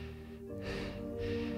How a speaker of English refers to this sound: He remembers what the counselor said about moving your fingers, moving your toes, trying to center yourself, trying to bring yourself back to reality, not to panic. And he's breathing hard.